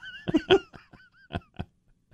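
A few sharp coughs, two close together and then two more after a short pause, moderately loud, with no talking around them.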